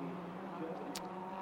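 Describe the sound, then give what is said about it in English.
A steady turbocharged engine drone from a Hyundai Veloster N race car, a 2-litre four-cylinder turbo, racing in IMSA, broken about two-thirds through by one brief, sharp hissing chatter of a wastegate. “Just the noise of the wastegates chattering as these little 2-litre four-cylinder turbocharged.”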